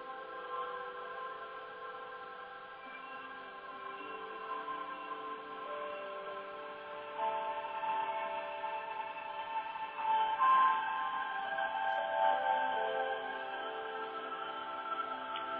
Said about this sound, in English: And as you listen to the electric piano,